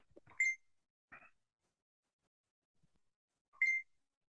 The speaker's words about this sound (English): I hear beeping. Matt's beeping. It's Matt sending me stuff. I should probably mute my phone